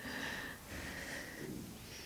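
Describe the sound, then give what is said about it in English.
A white-nosed donkey named Coil sniffs and snorts in three breathy, rushing bursts, each about half a second long, with no talking over them. “Do you want to sniff my fingers?”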